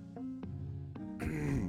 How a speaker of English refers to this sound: I had to clear my throat. I have smoked a lot of cigarettes in my lifetime